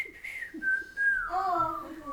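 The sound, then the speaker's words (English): A person whistles a bright, clear melody, the whistled tune from the beginning of the movie Robin Hood, holding long sustained notes that slide between pitches, fairly loud with no talking. “I always just see myself whistling that one.”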